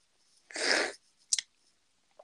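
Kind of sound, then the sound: food or drink, chewing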